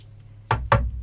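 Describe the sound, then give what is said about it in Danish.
Two soft knocks in quick succession on the wooden bottom board of a kitchen cabinet, each a short dull thud with a brief ring, with no voices. “Hun banker forsigtigt på pladen.”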